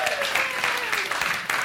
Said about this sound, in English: That's worth a round of applause.